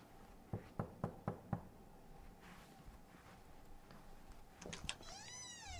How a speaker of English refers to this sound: Okay, fine. I'll knock on the door. I'll see you soon.